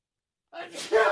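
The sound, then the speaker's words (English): A single sneeze breaks a moment of silence, a short breathy intake building into a loud, sharp burst at the end. “Bless you.”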